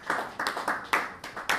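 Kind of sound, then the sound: crowd, half-hearted audience clapping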